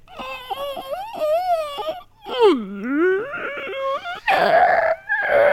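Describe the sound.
A voice imitates an eerie cry, half animal and half child: wavering, whimpering wails that rise and dip in pitch, ending in a rougher, breathy burst, loud and alone.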